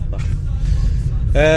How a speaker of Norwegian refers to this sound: Jeg kjører bil samtidig som spiller inn denne introen her. Og de sier at du skal aldri bruke telefonen samtidig som du kjører bil.